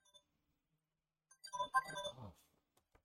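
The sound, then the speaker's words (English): A phone's electronic ringtone plays a short melodic burst of bright, layered tones lasting about a second, fairly quiet, with no one talking over it; an incoming call from a toll-free service. “Yeah, my phone.”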